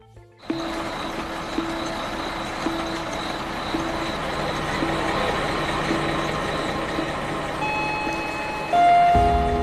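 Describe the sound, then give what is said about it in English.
Several diesel buses idle together at 5 a.m. at a bus depot near the airport in Cape Town, with a steady, broad engine rumble, a dense mechanical drone that swells slightly before a louder burst near the end, with faint tonal whines above. “It's 5 a.m. at the Golden Arrow Bus Depot near the airport in Cape Town.”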